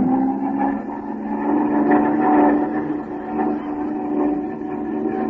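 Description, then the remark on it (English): An airplane engine roars steadily through a power dive, a thick droning hum with layered harmonic tones that swells and eases slightly in loudness, with no voices over it. “Oh, well, I'll push this stick forward and go into a power dive and see what happens here.”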